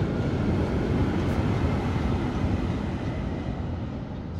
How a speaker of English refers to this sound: wait, sorry, the train.